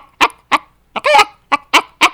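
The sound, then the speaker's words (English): A human voice imitates a rooster: a run of six or seven short, sharp clucking bursts at a steady clip, with one longer drawn-out call in the middle. It is fairly loud, with no talk. “It's a chicken.”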